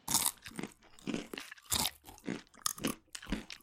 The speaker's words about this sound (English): I got a clue about this a few months ago when I visited the Bwindi Impenetrable Rainforest in Uganda and trekked with a troop of gorillas there. One thing that struck me about the gorillas was how much time they spent just chewing.